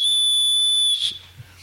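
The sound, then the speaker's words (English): Several shrill personal safety whistles, blown together in unison on a count of three, blast in one loud, steady, piercing tone for just under a second, then cut off abruptly, leaving a low murmur behind. “And let's all do the rape whistle together in unison on 1, 2, 3.”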